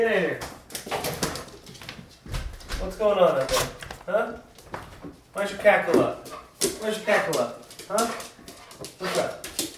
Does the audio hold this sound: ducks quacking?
no